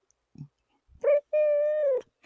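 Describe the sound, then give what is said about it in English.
A pet cat named Ellie, after Ellie from The Last of Us, meows: a short chirpy call followed right away by a longer, steady drawn-out meow, with no one talking and only a faint soft bump just before. “Though when you said it, you were rubbing her belly, and I thought you said belly, and I love the idea of belly as a cat name.”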